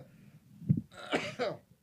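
A man coughs: a short throaty rasp, then two or three harsh, breathy bursts in quick succession before it trails off into quiet.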